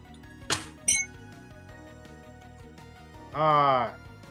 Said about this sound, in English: Sidebar, ding. Oh, I have the bell right there.